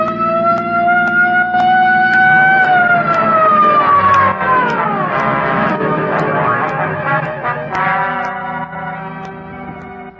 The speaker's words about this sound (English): Just as the not-so-sharp shooter made another try, I picked up just what I was looking for, a game of tag with a police patrol car.